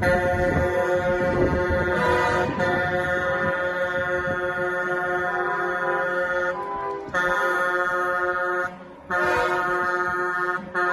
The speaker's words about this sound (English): Yep, that's just a guy on a bicycle riding as slow as humanly possible while dozens of huge trucks honk their horns at him in frustration.